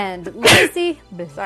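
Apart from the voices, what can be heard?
a sneeze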